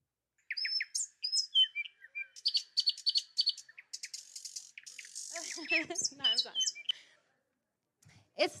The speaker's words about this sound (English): when you hear the birds singing, you know that springtime is coming